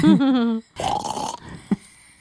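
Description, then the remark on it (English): A voice imitates snoring: a low droning groan slides downward, then a rough, raspy inhaled snore rattles for about half a second, ending with a brief soft thump. “A family full of snoring people.”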